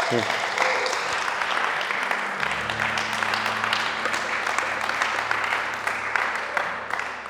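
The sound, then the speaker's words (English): An audience applauds steadily for several seconds, a dense wash of many hands clapping at an even loudness, with a low steady hum running underneath. “I think another round of applause, everyone.”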